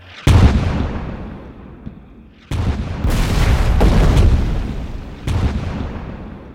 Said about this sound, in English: All they could hear was the massive explosion of the German shells coming in closer.